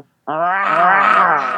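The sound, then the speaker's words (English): A person lets out a single sustained, throaty roar in imitation of a panther, loud and voiced with a low growling pitch, held for over a second after a brief silence. “Would you do us a favor and give us your best Panther roar?”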